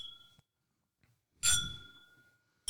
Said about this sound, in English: I love a Glencairn. Cheers.